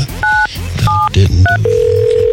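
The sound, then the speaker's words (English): Three short touch-tone keypad beeps sound in quick succession as a phone is dialed to make a call, followed by a steady, unbroken phone tone that holds to the end, all loud over a low background rumble. “Let me pick up the phone here. Call this thing.”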